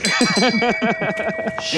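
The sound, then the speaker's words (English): A bell, rung as a shame bell, rings out with a steady, sustained metallic tone that hangs through the whole moment while a voice carries on over it in a rising and falling pattern. “I'm gonna give myself shame. The shame bell right shame.”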